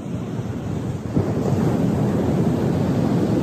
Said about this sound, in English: We can come back to the sound of these waves too. That's quite nice as well. I hope you all can hear them.